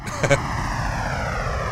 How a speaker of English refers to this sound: Anyway, let's hop on the plane, Alex, to Brazil. All right. You don't have to do that. Here it is, the sound.